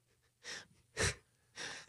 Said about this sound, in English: So it's funny though, because like the cough comes with laughter.